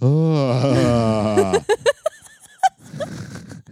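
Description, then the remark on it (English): A person imitates an urgently bawling cow with a loud, drawn-out moo that wavers in pitch for over a second, followed by short choppy bursts that sound like laughter. “That's my cow impression.”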